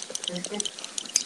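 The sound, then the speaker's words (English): Several quick, sharp clicks from a retractable pen, spaced unevenly across a second or so, fairly crisp, with a faint voiced murmur underneath. “stop clicking the pen.”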